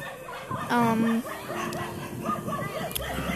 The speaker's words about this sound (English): Like, there are many dogs in here. Like, there's literally 10 different types and breeds of dogs here. There are many puppies and all that.